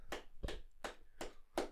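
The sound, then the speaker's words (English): Five sharp, evenly spaced knocks as a wobbly microphone is bumped, each a crisp thump with a rattly edge, repeating at a steady clap-like rhythm with no talking. “Sorry, my mic's... That's fine. It's wibbly wobbly.”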